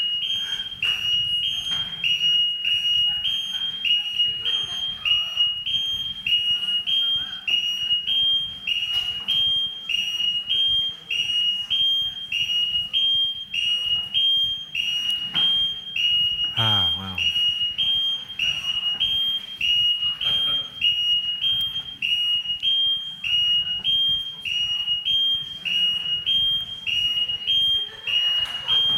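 A loud smoke alarm, set off by steam during a church sermon, beeps continuously in a rapid, steady high-pitched pattern for the whole stretch, with faint voices and movement underneath.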